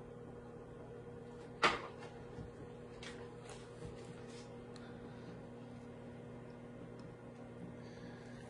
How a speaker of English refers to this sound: And I'm just cooking it in the microwave to save time, but I would definitely cook this in the oven or if you have an air fryer.